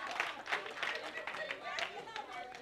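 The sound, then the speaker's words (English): An audience claps steadily, a dense, sustained patter of many hands at a moderate, even loudness, with faint voices mixed in beneath the applause. “Keep clapping. Keep on clapping.”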